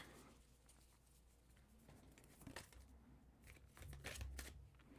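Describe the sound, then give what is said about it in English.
Crystal and gemstone cards being shuffled, a soft run of papery riffles and flutters with brief louder bursts near the end, no voices, over a low steady background hum. “I know I shuffled them earlier, but it's a habit. I just want to shuffle them again.”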